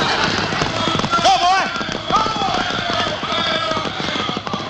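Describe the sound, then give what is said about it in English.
Rapid, repeated hoofbeats pound steadily as horses, just freed from a wagon, gallop off, with shouting voices and whoops layered over the busy, continuous clatter. “They got the horses off the wagon. Get after them.”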